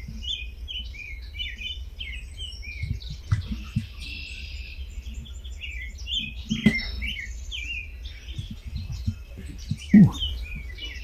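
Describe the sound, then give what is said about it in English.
Outdoor birdsong: a chorus of chirps and warbled phrases from several birds, including an American robin's caroling, a red-winged blackbird's buzzy call and a grackle, over low rumbling background noise and occasional soft thumps. “American robin, red-winged blackbird. Uh-huh. I heard a grackle in there.”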